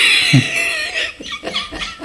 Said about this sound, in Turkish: Ben de doya doya burnumu aslanlar gibi sileyim. Vurram diye. Bir de en sonu bir de zurna gibi öter ya. Vurram zart.